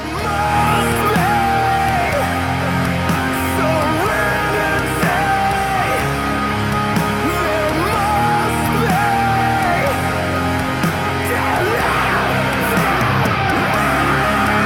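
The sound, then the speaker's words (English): A live metal band plays at full volume, a dense wall of distorted guitars and pounding drums under a soaring, wavering sung vocal line that rises and falls throughout. “And it's just a live recording of them playing.”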